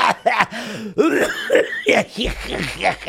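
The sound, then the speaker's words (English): A fairly loud run of coughing and throat clearing, several rough bursts in quick succession with brief gaps between them and no talking. “I'm coughing.”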